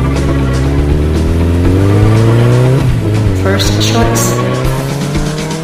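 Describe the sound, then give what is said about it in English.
A motorcycle engine revs loudly, its pitch climbing steadily through the gears as it accelerates away, then dipping briefly before rising again. “I love a woman with a motorcycle. Get on. A bike is always my first choice.”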